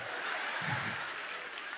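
A crowd applauds and cheers in a steady, dense wash of clapping that holds at an even level throughout, with no single voice standing out.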